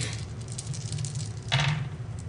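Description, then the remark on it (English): Dice rolled for a rapport check clatter and rattle across a hard surface for a couple of seconds, with a sharper burst of tumbling near the end, over a low steady hum, no voices. “I've never gotten a positive on these dice yet.”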